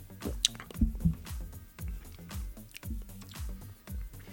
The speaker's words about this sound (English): Let me take a sip and see again. Okay, take another sip.